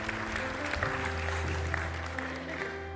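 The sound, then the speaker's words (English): An audience claps together in a steady, dense wash of applause that holds for a few seconds, with a low hum underneath. “Now, if one person claps, we all have to.”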